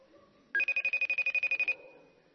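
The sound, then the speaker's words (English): An outgoing phone call rings with one loud burst of rapid, trilling electronic pulses lasting just over a second, then cuts off into quiet hiss. No one speaks. “It's phone a friend time.”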